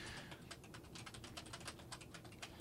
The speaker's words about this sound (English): My big-ass mechanical keyboard. Like, I need to get another one. Fuck this keyboard. It came with my computer, though.